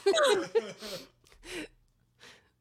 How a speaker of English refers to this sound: going to gasp very loudly.